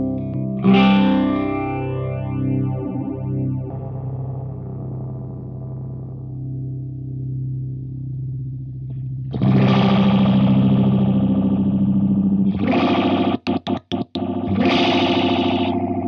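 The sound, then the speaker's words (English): An electric guitar runs through a 6- or 12-stage phaser pedal, its sustained distorted notes swept by fast, swirling modulation, with a louder burst of chords near the end and a few abrupt cut-outs. “Used it on … for that one phaser part”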